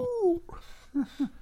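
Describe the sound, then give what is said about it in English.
A man's voice gives a short, falling howl in imitation of a coyote, followed by a couple of brief, low vocal bursts, fairly quiet. “I do that. I do that to howls at night.”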